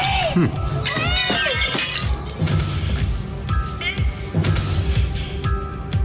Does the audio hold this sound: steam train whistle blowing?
no